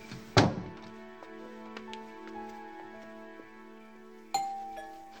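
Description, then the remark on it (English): A doorbell chime rings out with a sharp strike and long, lingering tones, then sounds again about four seconds later. No voices, just the clear, moderately loud bell. “Look, give me a minute to go upstairs and then ring the bell.”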